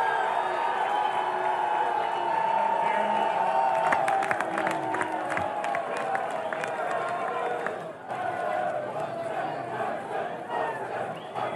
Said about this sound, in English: I love that. Here the Raider fans cheering Woodson.